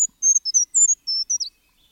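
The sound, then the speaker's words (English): A series of thin, very high-pitched brown creeper calls, about eight short tseee notes in quick succession, clear with no other sounds around them. “One of those native birds is the brown creeper.”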